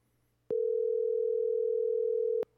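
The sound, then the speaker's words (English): A single steady electronic phone ringing tone sounds for about two seconds, loud and clear, with a faint click at its start and end and no talking. “Hey, we just wanted to call you. We are live on the podcast right now.”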